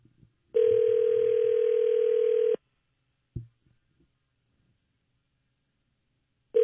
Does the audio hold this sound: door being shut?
no